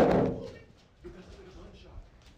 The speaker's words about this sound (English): Oh, yo, I'm gonna pop this balloon, bro.